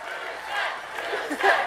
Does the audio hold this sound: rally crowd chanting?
yes